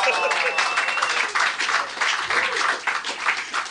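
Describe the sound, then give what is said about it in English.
Steady audience applause, a dense, even wash of many hands clapping at once for several seconds, with a few faint voices mixed into the noise. “Oh, they applauded right exactly when any audience would.”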